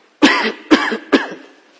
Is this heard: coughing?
yes